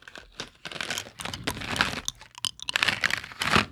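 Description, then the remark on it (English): Close-up chewing of a green Mike and Ike candy right at the microphone, a steady run of sticky, crackly mouth sounds with irregular bursts, loud and intimate, no talking. “Can we get a close-up chew of that?”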